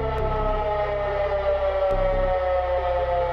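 Air-raid sirens wail steadily at full volume at sunrise on February 24 as the Russian military draws closer, a sustained droning tone with a low rumble beneath, no voices present.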